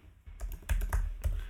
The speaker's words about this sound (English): Sorry, I'm just typing in reverb.